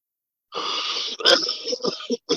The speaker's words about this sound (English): Now, it's important that everyone at home understands that is not the typical weed-smoking cough